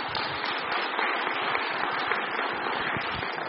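A crowd applauds steadily for the whole stretch, a dense, even wash of many hands clapping at once with no voices rising above it and no letup in loudness.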